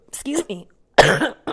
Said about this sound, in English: I'm coughing in the middle of my scripture.